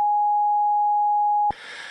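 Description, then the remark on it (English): A loud censor bleep: one steady, pure mid-pitched tone holding for about a second and a half, then cutting off abruptly into a short stretch of soft, hissy noise. “Sorry, you're going to have to beep that”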